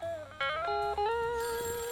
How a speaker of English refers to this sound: Everyone just, let's just make the phones explode. Let's see if we can break the phones with them ringing so much.